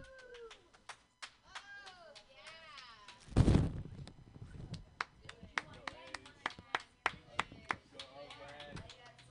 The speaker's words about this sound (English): Round of applause, round of applause. Let him hear it.